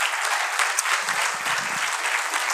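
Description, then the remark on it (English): An audience applauds steadily for a woman being thanked, a dense wash of many hands clapping at an even level with faint voices murmuring underneath. “I wish you'd give her a hand clap.”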